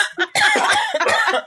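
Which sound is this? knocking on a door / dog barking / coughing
coughing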